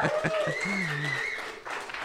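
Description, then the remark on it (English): A short burst of applause for a guest who says she has never failed to finish an event: a dense steady wash of clapping with a few voices whooping and calling out over it, fading slightly toward the end. “Round of applause.”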